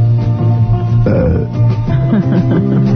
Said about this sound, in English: Is that? That's the burping guy.